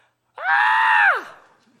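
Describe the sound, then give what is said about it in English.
A woman in a church audience screams out during a sermon: a single loud, sustained high-pitched scream rings out for nearly a second, steady in pitch before sliding down and fading, with no talking around it. “Ooh, oh, sister, scream out.”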